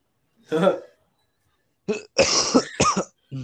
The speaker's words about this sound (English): Uh-oh, I've got you sick through the mic. I'd be coughing a lot. I'm actually, it's so awkward coughing in public, so I try to hold in my cough, and yeah.